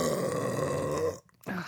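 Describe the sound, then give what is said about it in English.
A long, loud burp, a rumbling guttural sound lasting about a second, followed by a brief pause and a short voiced grunt. “I have to burp.”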